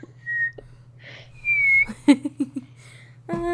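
Someone whistles two clear notes: a short one, then a longer, slightly wavering tone. A few brief knocks and a voiced sound follow over a low steady hum.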